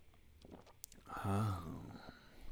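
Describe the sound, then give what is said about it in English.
A wet, squelchy sip of Free Flow IPA beer from Otter Creek Brewing of Vermont: a few small clicks and smacks, then a longer slurping draw with a hollow, pitched tone that fades out. No one speaks. “Hopefully my squelchy sipping isn't too loud.”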